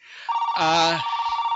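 A telephone rings for an incoming call from a caller calling back on a computer phone after the call died off, a steady electronic tone sounding loud, with a brief voice-like burst overlapping it early on.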